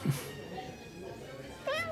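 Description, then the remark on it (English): A single short, clear meow from a female cat rises near the end, after a stretch of quiet background noise and a faint brief sound at the start. “What's up with this cat? I think she's telling us something.”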